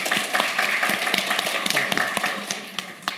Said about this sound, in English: A spontaneous round of applause you just got there.